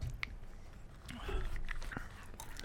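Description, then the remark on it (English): Close, wet chewing and crunchy bites of food right at the mic, with irregular smacking clicks over a low rumbling background for a few seconds. “Put the mic up to your mouth so people can hear you chewing”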